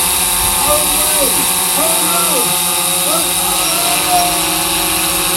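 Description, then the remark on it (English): A particularly big drone heading this way buzzes loudly overhead in a steady, droning whine that wavers slightly in pitch throughout, with faint voices murmuring underneath. “There's a particularly big drone heading this way.”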